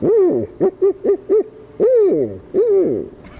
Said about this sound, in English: And the large great horned owl says, "I'm a great horned owl, aren't you?"